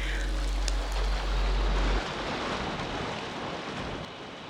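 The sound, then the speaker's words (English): Dense, continuous crackling and popping like frying fat from small snapping shrimp, heard with ears submerged in the water at Redleaf, steady throughout with a deep low rumble during the first couple of seconds. “There are little shrimp at Redleaf that make a kind of crackling sound when you submerge your ears in the water, and I can hear the little popping of the shrimp as the clouds drift above me.”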